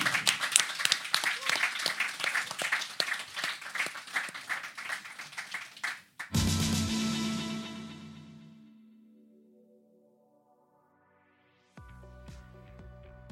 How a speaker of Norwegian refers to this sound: Da kan vi klappe på det.